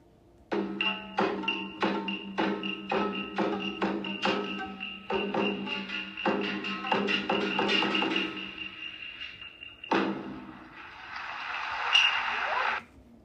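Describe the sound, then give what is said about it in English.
Kabuki geza offstage music on instruments like shamisen, gong, bells and the large odaiko drum: a steady series of sharp, loud percussive strikes with ringing metallic tones that quickens and blurs together, a beat signalling a curtain call, followed by a short burst of hissing, clapping-like audience applause as the play begins. “The music here accompanies the action on stage with instruments like the shamisen, gong, bells, and a large drum called odaiko.”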